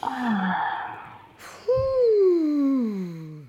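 A close, drawn-out yawn: a long breathy inhale, then a loud voiced groan that slides steadily downward in pitch before fading out. No speech.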